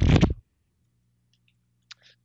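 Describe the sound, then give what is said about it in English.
A brief burst of a deck of playing cards being riffled to start combat in a game, then near silence over a faint low hum, broken by a couple of small soft clicks. “Combat in the world of Tropis requires me to shuffle my cards!”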